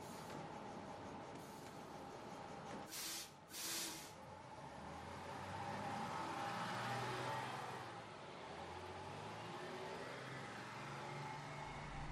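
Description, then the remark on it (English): A bus pulls up at a stop with a sharp double hiss of air brakes, then its engine revs and rumbles as it pulls away, loud over steady traffic noise. “Here comes my bus.”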